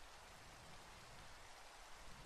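Steady rain falls in a continuous, dense hiss with no pauses, a soft even patter spread across a wide band of sound and no voices.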